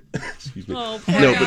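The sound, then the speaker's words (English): A short burst of throat clearing and a cough, fairly loud, with voiced, speech-like sounds mixed in around it. “So then started feeling a little not great and had a few little coughing fits.”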